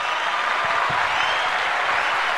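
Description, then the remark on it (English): A crowd applauds with a dense, steady wash of clapping that holds at an even level for a couple of seconds, with no voices over it. “Hold on, let me give you an applause.”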